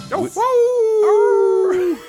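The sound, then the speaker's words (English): People imitate a wolf howling into microphones to introduce the Weekly Wolfie awards segment: a loud, long, steady howl, held at one mid pitch for well over a second, with voices briefly joining in before it trails off. “That was us doing it into the mics. That's not a real wolf outside our window.”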